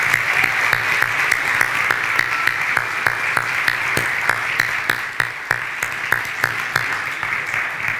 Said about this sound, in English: Let's give those that made that decision a round of applause. That's a big deal.